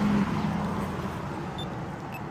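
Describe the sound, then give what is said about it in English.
Steady roar of traffic on a two-lane street at a pedestrian crossing, a broad rumbling wash of passing cars that do not stop as the crossing's warning lights are turned on, with no pauses, plus a couple of faint high electronic chirps near the end. “But look at that, cars are just, they don't care. Cars are just, let's go.”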